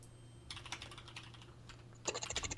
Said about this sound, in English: Get those typing fingers.